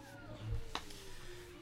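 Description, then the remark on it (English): A single drawn-out meow from Sarah Beth, a yellow-eyed cat in a doorway, slowly slides downward in pitch. It is moderately quiet, with a short knock partway through and a louder thump at the very end. “He turned to see Sarah Beth staring at him from the doorway, her yellow eyes glowing in a dim light. Spooky ass cat. Damn cat.”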